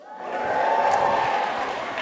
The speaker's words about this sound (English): The thing is, Tito's such an egomaniac, he will love that you applaud in the middle of the sponsors for him.